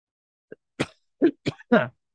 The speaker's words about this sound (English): But I hope you enjoyed this despite my heavy coughing.